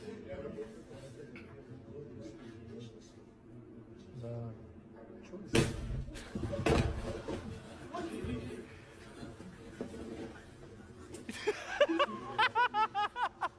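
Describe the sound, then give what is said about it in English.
Two sudden, loud bursts of airbags built into couches, fired by a trigger, go off close together, launching people out of their chairs, surrounded by background chatter and people laughing and shrieking in surprise. “they're putting airbags in couches, and they have a trigger on them, and they're hitting the trigger, and it is literally launching people out of their chairs.”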